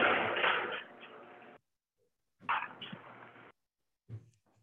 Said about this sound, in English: I've got to open a garage door. Oh, sure. It's gonna be loud. Hold on.